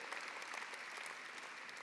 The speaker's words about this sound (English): So we kind of started to do a clap, but can you just give yourselves a clap and just honor each other in this room?